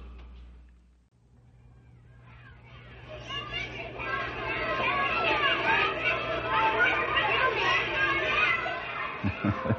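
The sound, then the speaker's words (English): A crowd of children coming home from school shouting and laughing, their overlapping high voices rising out of a low hum and building into a loud, busy clamor that lasts to the end. “The shouting and laughter of children coming home from school is most enjoyable”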